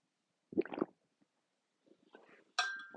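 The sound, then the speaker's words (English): A couple of quick wet gulps of water being swallowed in a living room, a soft pause with faint rustling, then a bright ringing clink as a glass is set down. No one speaks. “I will apologize for that because I just noticed on the sound bar that you're gonna hear me swallowing that water.”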